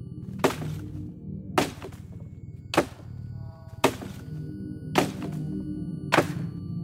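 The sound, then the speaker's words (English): A hatchet strikes a pine tree in the snow six times, stripping its bark at a steady, unhurried pace, each blow a sharp, crisp thunk with a brief splintery edge, over a low, quiet background rumble. “With a grunt, Jacob began stripping bark from the pine tree.”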